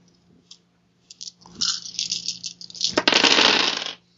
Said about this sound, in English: What's your natural dice you rolled? 8. You rolled 8 dice?